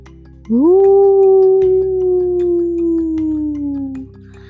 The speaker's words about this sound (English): But for a little bit of context, that's the sound of a baby coyote. It was the sound of a baby coyote. And it was coyote season, so we just assumed it was a coyote very, very far away.